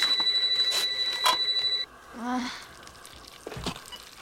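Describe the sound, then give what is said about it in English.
A telephone rings in a home at night with a shrill, steady electronic trill for a couple of seconds over a faint sizzling crackle, then cuts off as a voice speaks briefly. “She's making popcorn. And the phone rings.”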